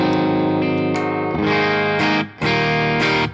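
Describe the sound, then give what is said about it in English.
Electric guitar chords played through a regular AC30 amp tone on an HX Stomp unit, loud and slightly driven, with several strummed chords ringing out and sustaining between strokes, no one talking. “So this is my kind of regular AC30 tone.”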